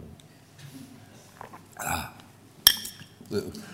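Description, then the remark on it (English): A glass of water is picked up, with soft shuffling and then one sharp, ringing clink that stands out clearly before fading, followed by a few quieter handling sounds. “So you know what a glass of water is, and I better have one, that's a good idea.”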